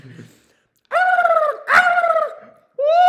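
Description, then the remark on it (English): A person imitates a turkey call, shaking the head to get the cheeks wobbling, with three loud, high, warbling gobble calls separated by brief pauses, the middle one breaking into a rough, sputtering burst. “I don't think they want to hear my turkey call.”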